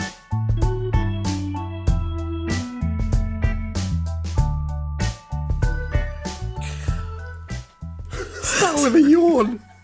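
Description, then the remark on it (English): Near the end, following a stretch of rhythmic music, a person lets out a drawn-out, breathy yawn whose pitch wavers and falls. It sounds fairly loud. “Started with a yawn.”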